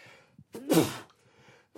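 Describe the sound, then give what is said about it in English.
A single loud human sneeze bursts out after a brief sharp intake of breath, followed by a quiet pause with faint breathing and no talking. “I'm about to sneeze here. I'm sorry.”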